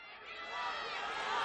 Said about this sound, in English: And we took the liberty of doing that with the blue sounds, but this is every show from 2021 down through 2006 with the crowd chanting blue strung together.